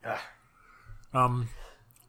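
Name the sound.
sneeze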